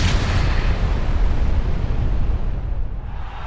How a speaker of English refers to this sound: Oh, and that explosion rocks the arena.